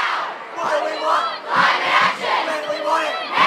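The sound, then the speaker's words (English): A large climate strike crowd of about 200,000 people in Melbourne chants in loud, rhythmic unison, voices rising and falling in repeated phrases with a dense, reverberant roar filling the space. “I think the crowd reached about 200,000 on September the 20th, 2020.”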